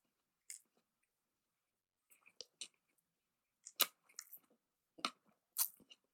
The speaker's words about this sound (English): Good chewing. All right. It's very chewy. Okay. It tastes like quite like bland sushi.